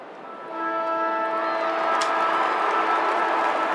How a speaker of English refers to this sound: So that'll be it. That'll be the full-time scoreline. Geelong will win by 18 points. Siren about to sound, and here it is.